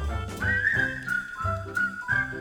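A person whistles a bright, steady melody with a few sliding notes, carried over a rhythmic instrumental backing with bass pulses. No one speaks.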